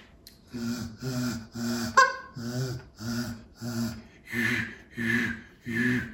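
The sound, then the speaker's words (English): A goose call blown with bass from the throat in a steady series of about eight low, throaty honks, each a short breathy pulse with a deep buzzing bass, evenly spaced with no talking. “And what I'm doing with the bass in my throat, you, you, you.”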